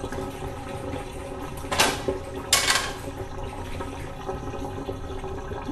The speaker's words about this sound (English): That's way louder than I was expecting it to be. Water drain.